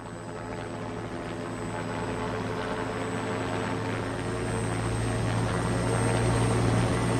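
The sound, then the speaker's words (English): A helicopter drones steadily with a deep rotor thrum and a thin high whine, growing gradually louder as it draws closer and comes in to land nearby. No voices are heard. “Air says the helicopter's coming, and Myra tells everyone to duck and cover your heads.”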